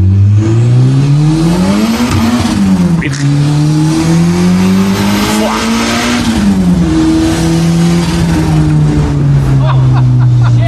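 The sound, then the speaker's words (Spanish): A loud new car's engine revs and accelerates continuously in a video, its pitch rising and falling through gear changes, dominant, with a brief exclamation from a voice partway through. “¿Eres tú con el coche nuevo?”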